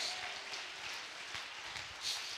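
A church audience on its feet claps hands steadily during a sermon, a dense, continuous patter of many overlapping claps with a bright, hissy texture, no voices standing out.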